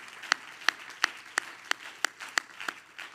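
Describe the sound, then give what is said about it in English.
An audience clapping hands to the Lord in a steady, even rhythm, about nine sharp claps in three seconds, over a soft wash of scattered clapping and crowd noise. “Everybody clap your hands again to the Lord.”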